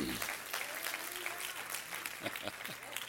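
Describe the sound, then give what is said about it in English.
A crowd claps steadily in a dense, continuous patter of many hands, with a murmur of voices running underneath the applause. “We want to hear what you have to say before we clap too loud.”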